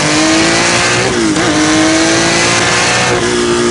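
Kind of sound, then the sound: vehicle, car accelerating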